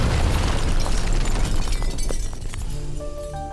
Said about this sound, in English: One fateful evening, Gentry got into his car to run an errand, only for the vehicle to explode around him.